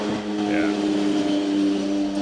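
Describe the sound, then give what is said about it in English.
A sport motorcycle ("crotch rocket") engine revs in a steady, buzzing drone for about two seconds, holding a fairly constant high pitch with a slight rise partway through, loud throughout. “Also brought to you by Crotch Rockets.”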